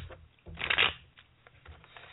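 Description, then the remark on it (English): Tarot cards being shuffled, with a soft papery riffle that swells into one louder burst of fluttering cards, then fades to light scattered shuffling. “So I know this is very exciting for radio, both shuffling.”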